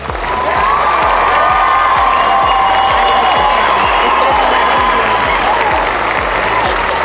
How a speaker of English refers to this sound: And this time we're going to use a little bit of cheering.